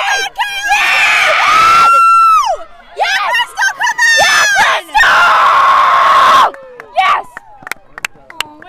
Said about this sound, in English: We have to cheer.